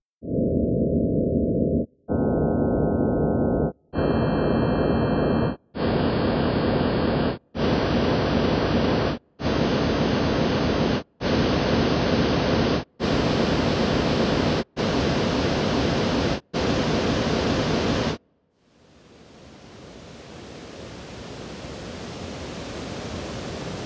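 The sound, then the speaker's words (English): Ten loud, evenly spaced bursts of synthetic rushing noise, made by adding 150 frequencies at a time, each brighter and fuller than the last, build toward a digital reproduction of a waterfall, then give way to a steady, swelling roar of falling water. “Now we're going to add 150 frequencies at a time, and eventually, it'll start to sound like the original waterfall.”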